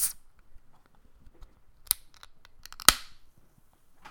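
A can of Rheingeist Cheetah Lager beer is cracked open: a couple of sharp metallic clicks, then one loud snap followed by a brief fizzing hiss, with no talking.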